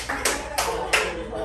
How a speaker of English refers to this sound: Applause break, but you know that just eats into my fucking time, right? Fuck yeah. I'm supposed to tell a joke over claps?